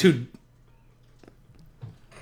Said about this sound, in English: Why did you clear your throat for me? They won't know. Exactly.